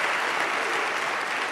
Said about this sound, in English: Come on, give the Lord a clap and a shout right now.